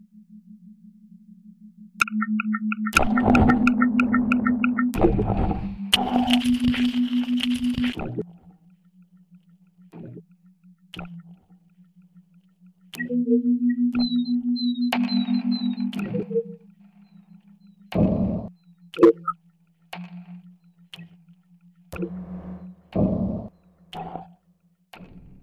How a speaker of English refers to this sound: The Lake by Julie Freeman, which cast a wide net by using bioacoustic tags of 16 fish in a small acre-sized pond and underwater hydrophones to sonically translate the movement of the fish into slippery tunage, proving you really can tune a fish.